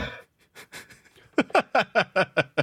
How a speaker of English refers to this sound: I'm sorry I left those pauses in there, but the fucking breathing gets me.